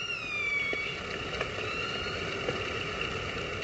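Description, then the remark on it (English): Killer whales calling to each other, recorded underwater with a hydrophone and broadcast live on Orca FM, run by Vancouver Aquarium in Canada, from Johnston Strait: high, wavering whistles that slide slowly downward over a steady underwater hiss, with a few brief clicks scattered through. “No presenters, no music, just the sound of killer whales calling to each other.”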